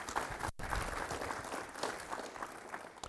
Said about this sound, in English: Let's pray. Yeah, let's clap.